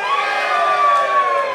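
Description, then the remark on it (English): An audience cheers and whoops when asked who supports the Eagles this year, a loud, sustained burst of mixed voices, steady throughout with no speech standing out. “Can we get a show of hands? Or a bit of a cheer?”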